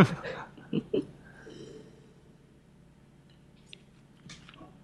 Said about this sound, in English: I'm going to try to take a sip with the microphone.